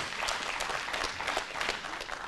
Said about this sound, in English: Ooh, yeah, give him a hand clap of praise on that.